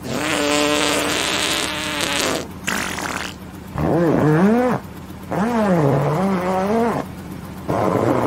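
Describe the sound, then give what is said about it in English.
A string of loud, drawn-out farts, roughly four of them with short gaps between, each buzzing and wobbling in pitch, from someone who is gassy after a breakfast of beans and chili. Prominent, with nobody talking. “But now I am very gassy.”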